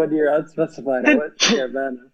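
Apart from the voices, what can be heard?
sneeze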